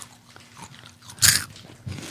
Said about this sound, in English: Yummy one. I'm going to crunch. I have to crunch. Yay, you gave me a good crunchy one. Piece of Reese's got on it.